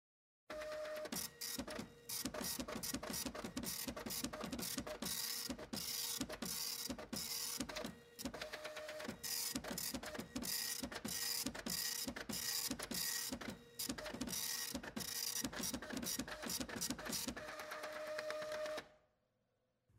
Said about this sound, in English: while we deal with a sentient printer